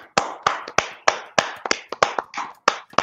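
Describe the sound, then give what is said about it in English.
A short round of applause for Gunther, who came in at number one in the Men's Royal Rumble: about a dozen sharp, bright hand claps in a quick, steady rhythm, fairly loud, with no voices over them. “Ladies and gentlemen of the podcast, can we get a round of applause for Gunther, who came in at number one?”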